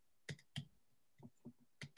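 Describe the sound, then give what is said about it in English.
Keyboard clicking with a clacky, typewriter-like sound: a handful of sharp keystrokes in an uneven rhythm, some louder and some softer, with no talking. “You sound like you're on an old school typewriter right now. I can hear every click you make.”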